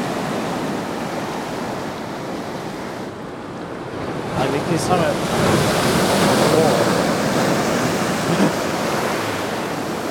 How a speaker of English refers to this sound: Look at this wave. Oh, a big wave coming. Yes, yeah, so, like, see when the water comes up here, this is when it's like.